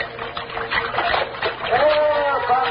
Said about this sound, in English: Did you hear it? Yeah, over in that direction. They call for help. Recognize the voices? Si, senor, it is them.